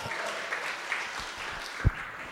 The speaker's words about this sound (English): I'm trying to feel it out if you're clapping your hands because you want me to stop.